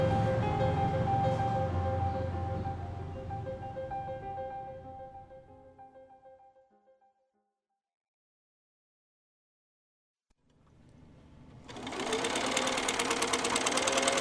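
A Juki industrial sewing machine runs with a humming motor whine that slows and fades into a few seconds of silence, then starts up again loudly.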